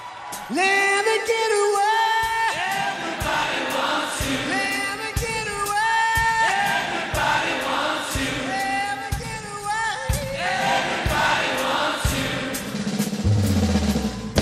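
A concert crowd sings along loudly in unison, their massed voices rising and falling over a steady, thumping drum beat, with occasional whoops and shouts mixed in.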